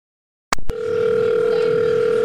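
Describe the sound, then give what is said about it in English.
After a short silence, a quick click from a handset being picked up gives way to a steady, unbroken telephone dial tone, a continuous mid-pitched hum held at even loudness. “If you're so worried, why don't you, like, call her?”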